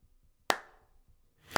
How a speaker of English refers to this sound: After the show was over, Chingon slowly clapped his calloused hands.